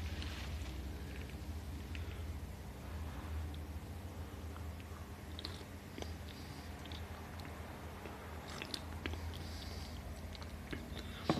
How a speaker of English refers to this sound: So about give me a second, and you know, let me sip on that. Green tea.